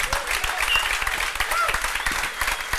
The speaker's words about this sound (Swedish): Applåd